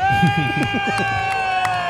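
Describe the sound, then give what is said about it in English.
A crowd cheers steadily for a large group of NHS staff going past, holding long, high, droning whoops. Someone speaks briefly in the first second, and a few sharp claps or shouts pop out over the noise. “Huge cheers now for the NHS.”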